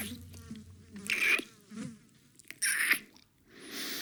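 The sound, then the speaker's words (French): Flies buzz in intermittent passes, the drone swelling loudly for a moment, fading, then returning in a steadier hum toward the end, with no voices present. “Le temps s'arrêta. On entendait les mouches voler.”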